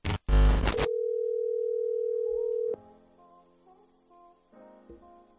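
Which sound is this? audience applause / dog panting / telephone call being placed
telephone call being placed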